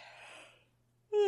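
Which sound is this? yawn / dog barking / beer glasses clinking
yawn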